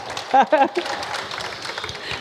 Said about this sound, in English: Yeah, brilliant. I think round of applause for the girl for that.